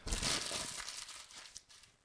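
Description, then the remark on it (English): A paper fry bag is crumpled up to be tossed into a trash can, a dense burst of crinkling and crackling that is loudest at the start, then thins into scattered rustles over about two seconds. “Yeah, so with that, I think we're going to crumple up the old bag and give her a hearty toss.”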